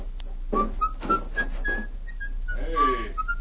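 A man whistles a lilting tune while walking away, the clear notes gliding up and down over a few seconds, with faint background murmur and shuffling beneath it.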